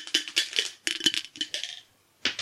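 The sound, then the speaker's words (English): A new 20-sided die is rolled to randomly pick a comedian in a game. It clatters across a hard surface: a quick series of sharp, bright clicks and tumbles, a brief pause, then a final rattle as it settles. “With the new 20-sided dice.”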